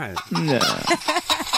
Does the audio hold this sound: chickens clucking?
yes